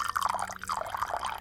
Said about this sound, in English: The opposite of here, a bit of ASMR for you here. Pouring some coffee for Mike Kalita. Can you hear that?